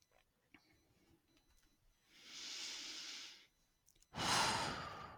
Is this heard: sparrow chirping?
no